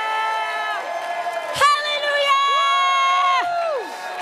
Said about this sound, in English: Let's clap our hands and thank God for what he's done. Låt oss klappa händerna. Tack Gud. Hallelujah! Hallelujah!